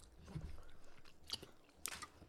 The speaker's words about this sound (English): 3, 2, 1. It's so crunchy, guys. You just hear the crunch.